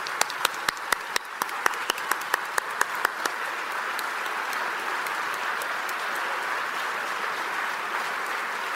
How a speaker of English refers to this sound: But if our current Radio One employees could please take a stand. I know a lot of them are working behind the scenes, but if you could please take a stand. And give everybody a round of applause.